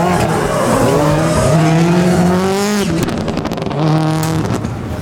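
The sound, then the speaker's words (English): A Subaru rally car engine revs hard on the final leg of a rally in the 100-acre wood, its pitch climbing and falling through quick gear changes while tires squeal, loud and continuous with no one talking. “After a busy service rush, both Subarus leave on time, ready to race the final leg of the rally in the 100-acre wood.”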